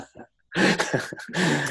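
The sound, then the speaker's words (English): A sneeze: a faint, quick intake of breath, a brief pause, then a loud, harsh, breathy burst that sputters into a second noisy blast before cutting off. “Told you someone might sneeze.”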